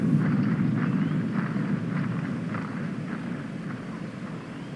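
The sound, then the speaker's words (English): A deep, steady rumble of a train on rails, overlaid with spears beaten on shields in sync with the train's rhythm and a low roll of thunder, loud and continuous with no voices. “The sound you hear is the soundtrack of a train on rails combined with the beating of the shields in sync with its rhythm, combined with the sound of a deep rumble of thunder.”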